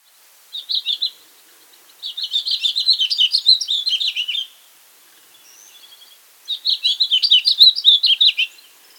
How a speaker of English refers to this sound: Did you hear that? That's a house finch, one of the most common birds to visit backyard feeders is this cheery little house finch. It enjoys backyard feeders immensely, and it manages to keep pace with the house sparrow and our own lesser goldfinch.